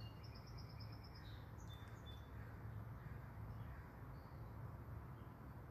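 Birds sing outdoors on a beautiful day after rain the night before: a quick run of high, repeated chirps opens, followed by a few scattered calls, all fairly faint over a steady background hiss.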